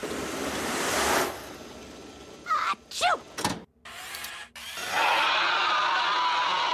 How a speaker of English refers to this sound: So the scream. Leela sneezes. He screams.